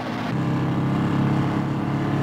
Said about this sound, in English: Hear the engines rev.